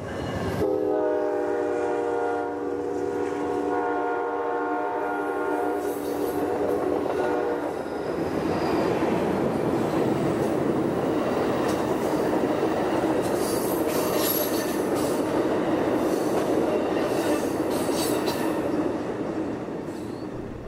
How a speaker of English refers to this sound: The train is now getting close to Milwaukee. We've just gone through a small railway station where I was interested to see a couple of people with cameras on tripods taking photographs of the train.